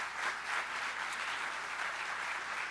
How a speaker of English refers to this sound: So let's give our college graduates a round of applause.